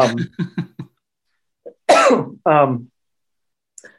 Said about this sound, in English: Even thinking of making me cough.